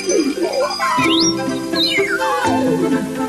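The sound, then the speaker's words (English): A voice speaks in an imitated bird language with rapid, squeaky rising and falling whistles, a few quick chirpy phrases delivered fairly loud over a steady background hum. “Because he answers everything in multiple languages, including bird languages.”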